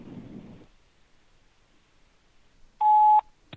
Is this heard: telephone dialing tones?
yes